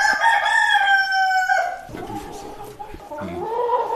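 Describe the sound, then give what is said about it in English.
A black Gaulois rooster, in a pen with two hens, lets out one long, loud crow, its drawn-out call sliding slightly downward before breaking off into softer, lower clucking and murmuring sounds from the birds. “Three beautiful black Gaulois, a rooster and two hens, are in a pen together.”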